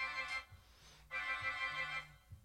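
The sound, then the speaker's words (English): The new LMB alarm, a phone ringtone for an incoming call from a daughter calling into the show, chimes with a bright, buzzy electronic tone: a short burst, a pause, then a longer sustained stretch, over a soft, steady low rhythmic pulse. “This is the new LMB alarm, and my daughter is calling into our show tonight.”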